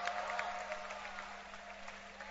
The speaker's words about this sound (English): And I believe that all of you, all those from Kutu, say stand up and let's see. Wow, clap your hands for them.